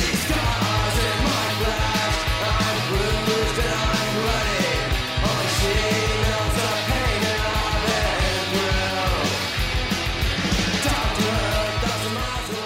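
A loud, dense proto-pop punk rock song from 1983 with distorted electric guitars, steady driving drums and a sung vocal line, playing at full intensity without a break throughout.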